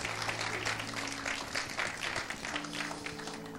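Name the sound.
audience hand clapping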